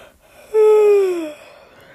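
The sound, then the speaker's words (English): A single drawn-out, voiced yawn, fairly loud, its pitch sliding gently downward for nearly a second before trailing off into quiet breathiness. “Also, yes, I do yawn a lot.”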